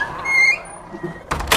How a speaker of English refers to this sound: Well, if you're leaving, just close the door quietly this time, okay?